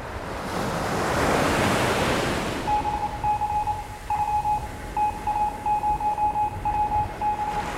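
A broad wash of ocean surf at sea swells and recedes, then fades beneath a series of clear, high electronic Morse code beeps pulsing in an irregular rhythm, in a theatrical recreation of a ship at sea on Christmas Eve 1906. No one speaks.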